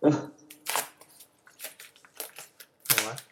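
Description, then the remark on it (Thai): A cylindrical parcel box being opened: a series of sharp, crinkly rustles and scrapes in uneven bursts, with a short vocal sound at the very start and a louder tearing rasp near the end. “แล้วก็เอากล่องพัสดุทรงกระบอกมานะครับผมกำลังจะเปิดดูเลยนะ”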